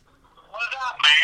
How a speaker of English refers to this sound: Answer that phone call and put him on speakerphone. Hello.